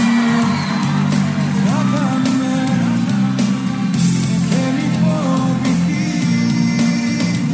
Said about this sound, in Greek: Ένα μεγάλο χειροκρότημα για τον Δήμο Αναστασιάδη. Συγχαρητήρια.